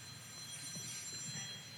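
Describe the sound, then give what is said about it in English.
A church's prayer alarm, a soft electronic alarm signalling the time to pray before a reading from Acts chapter 8, rings steadily, a layered, high-pitched tone holding without a break for the whole moment, fairly quiet and with no one speaking over it. “That's our prayer alarm.”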